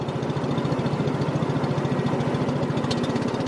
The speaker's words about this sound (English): A long-tail boat heads to what's called the Sipandon, or 4,000 Islands, in southern Laos near the Cambodian border.